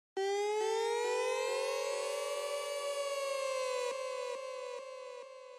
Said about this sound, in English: Let me play an example of a dub siren for you. I originally was going to include this in the track, but I decided not to because it clashes a little too much with the vocals. Here's what a dub siren kind of sounds like.